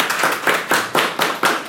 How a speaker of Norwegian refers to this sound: Velkommen Ola Borten Moe, Senterpartiet, og Lars Haltbrekken fra SV. Det går å gi en applaus, altså, det lov det. Det lov det.